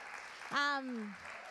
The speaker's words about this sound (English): Give the youth a clap.